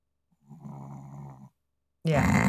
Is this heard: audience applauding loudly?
no